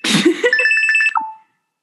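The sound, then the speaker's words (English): A phone rings with an incoming call from the speaker's partner, a rapid, trilling electronic tone, bright high-pitched pulses repeating quickly for about a second after a brief noisy burst, then cutting off into silence. “Sorry, my partner was calling me.”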